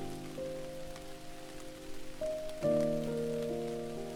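Steady rain patters on a surface throughout, a soft continuous hiss blended beneath sustained, gently shifting musical tones, with no voices present.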